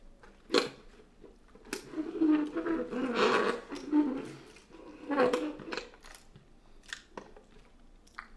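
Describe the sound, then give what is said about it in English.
Someone sips a fizzy Dr Pepper soda, with soft slurping and gulping broken up by small sharp clicks and clinks, then a quiet pause and a few final ticks. “I'm gonna take a sip of my Dr. Peppy before I give a plot synopsis.”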